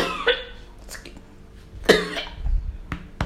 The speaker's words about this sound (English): Goodness, excuse me, I'm about to cough. Excuse me. I think I've attracted a little dust.